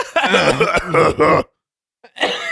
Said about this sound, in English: I just turned into an old man. Oh my gosh, you were laughing and then you coughed. I did the old man cough.